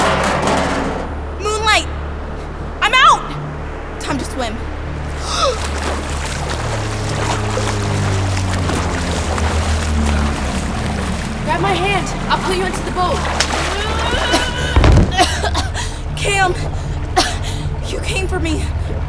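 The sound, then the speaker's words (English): Ocean waves slosh and churn continuously beneath a steady low rumble, with sharp splashes and brief squeaky vocal chirps popping up throughout. “Waves. I hear waves.”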